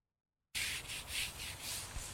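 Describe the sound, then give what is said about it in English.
Brisk scrubbing against an old headstone in the Ithaca City Cemetery, about six rhythmic back-and-forth strokes with a harsh, hissy rasp, starting abruptly after a brief silence, as the tombstone is cleaned with a cleaning agent. No one speaks. “This is with water, because she's already done a lot of scrubbing with the cleaning agent.”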